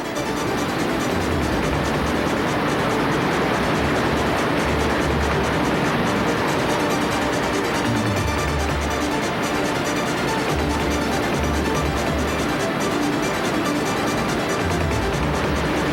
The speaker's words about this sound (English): Everyone was digging their paddles deep, going for maximum power to punch the waves.